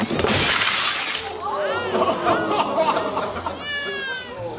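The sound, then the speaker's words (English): A loud crash of a pile of dishes, dumped by a man onto the floor, shattering: a burst of breaking crockery that rings out, followed by scattered clinks and a couple of high, wailing cries. “he dumped a bunch of dishes on the ground and they all shattered.”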